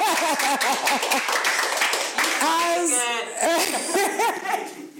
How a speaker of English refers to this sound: round of applause